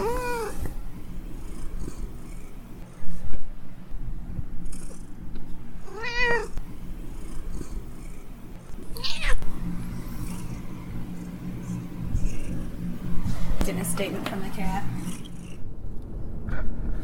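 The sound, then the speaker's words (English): A cat meows several times, drawn-out rising-and-falling cries spaced a few seconds apart, over a steady low rumble like a vehicle in motion, during a drive heading to the Lost 40. “Statement from the cat.”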